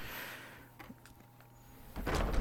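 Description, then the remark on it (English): A video game door opens with a few mechanical clicks and thumps, then a loud rushing slide that swells near the end. Fairly loud, with no talking over it. “Open the door. Go through it.”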